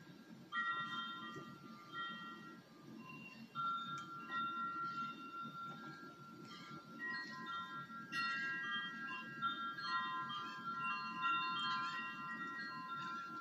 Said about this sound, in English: Y'all hear that? The wind chimes again by my favorite window.